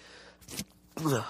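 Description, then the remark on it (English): A single sneeze: a short breathy intake followed by a sudden loud, explosive burst that trails into a brief voiced tail. “Okay, so sneezed.”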